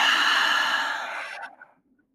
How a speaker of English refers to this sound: Let's do another one like that. Breathing in together. And breathing out.